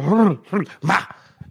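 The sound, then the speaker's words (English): A person imitates a dog barking: three loud woofing barks in quick succession, followed by a softer, brief yip at the end. “I'm just trying to get into character.”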